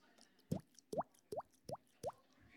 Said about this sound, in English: Did you hear that? That was my little bubbles, yeah.